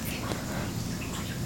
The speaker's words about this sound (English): Okay. I just realized that we can hear the little water fountain from my cats.